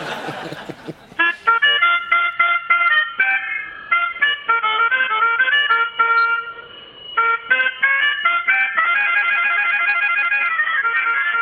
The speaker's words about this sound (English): would you mind just letting everybody hear how a little old melodica sounds? Oh, yeah, I'll give it a little toot for you.